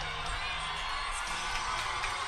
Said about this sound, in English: Now Utah State back out onto the pitch. You can hear the Utah State fans cheering on the performance they've seen from their Aggies.